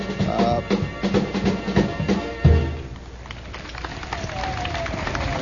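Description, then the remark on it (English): A crowd of visitors from the Middle West and the Bronx applauding in a dense, steady wash of clapping, with a few deeper rhythmic thumps early on and a heavy low bump midway before the clapping carries on evenly. “Now, you're hearing the applause from the assembled pilgrims from the Middle West, and don't think for one minute that the Bronx is not represented well here.”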